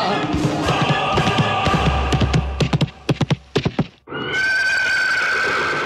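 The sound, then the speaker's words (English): A white horse ridden by Kim Jong-un gallops past the camera on a snow-covered slope of Mount Baekdu in a 2019 film, a quick run of sharp hoofbeats, then a loud, high whinny after a brief pause, with a faint low hum in the background. “Now he's galloping past the camera on a white horse, every close-cropped hair firmly in place.”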